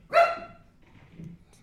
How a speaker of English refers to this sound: No, he has a dog upstairs. Oh, it's a dog upstairs.